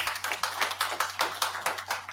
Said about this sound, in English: Ladies and gents, give him a round of applause.